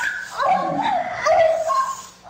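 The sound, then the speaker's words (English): A recording of a person growling at the speaker in a drawn-out, whiny grumble that rises and falls in pitch for a couple of seconds, with no one talking over it. “So I forgot that you were growling at me. I recorded it.”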